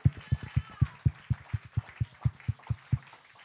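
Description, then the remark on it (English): An audience claps together to celebrate God in a quick, steady rhythm, about four claps per second, each one a sharp, punchy hit, keeping time for several seconds before easing off. “Clap here and celebrate God.”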